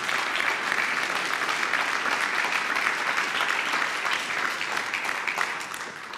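An audience claps for the Lord for the word just preached, a steady, dense wash of many hands that holds loud for about five seconds before starting to thin and fade at the end.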